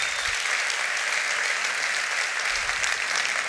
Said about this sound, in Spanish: Y si va a darle un aplauso, déselo a Dios.